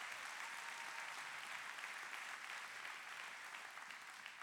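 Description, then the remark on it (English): An audience clapping steadily, a dense, continuous wash of many hands applauding at an even level throughout, with no voices standing out. “Come on, clap.”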